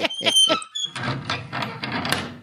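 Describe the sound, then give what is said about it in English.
A shop door creaks shut: a few sharp, high squeals give way to a rough, grinding scrape as it swings closed, fairly loud, with no voices. “Stop till I shut the door of the shop.”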